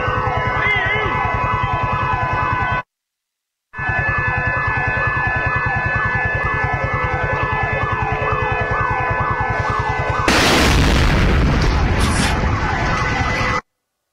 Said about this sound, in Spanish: Bien, este era uno de los coches bomba que explotaba en la madrugada.